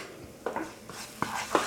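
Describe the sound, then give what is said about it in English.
Stir-frying a lot of garlic and vegetables in a pan: a steady low sizzle with a few sharp scrapes and clinks of a utensil against metal, fairly quiet, with no talking. “But this one, we're just gonna do a lot of garlic because I'm stir frying.”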